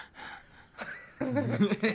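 A boy breathes hard into a microphone, heavy, breathy exhales right up against it, loud, followed by a voiced gasping sound in the second half.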